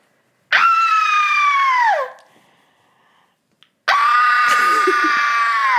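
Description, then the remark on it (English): Two long, loud, high-pitched screams of delight ring out upon looking into a gift bag, the first sliding downward in pitch before a short pause, the second bursting in and holding strong. “I hope these are screams of delight and not...”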